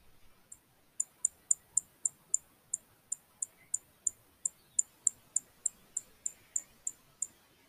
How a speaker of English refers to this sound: Okay, got that? That is a chipping sparrow alarm call.